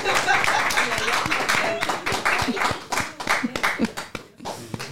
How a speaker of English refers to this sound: He wants an applause.